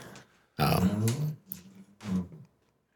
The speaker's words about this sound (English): Well, my Teddy. So folks, the podcast dog is making noises. Yeah. We've been waiting for that. He'll do this when we're on break and just kind of moan because I guess he's tired of hearing us, but it's kind of funny.